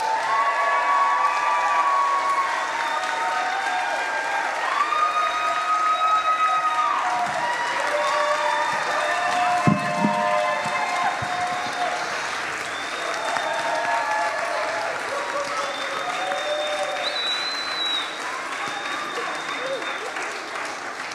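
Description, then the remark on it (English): A crowd at a Christmas production applauds steadily for about twenty seconds, the dense clapping holding loud and even, with overlapping cheers and whoops rising above it throughout. “Come on, can you give us another round of applause here?”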